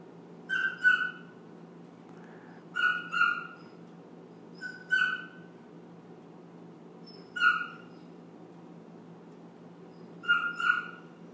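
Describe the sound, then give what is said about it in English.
A dog whimpers and yips in five short, high-pitched squealing bursts spaced a few seconds apart, over a steady low background hum with no talking. “Sounds like a mouse stuck in a trap.”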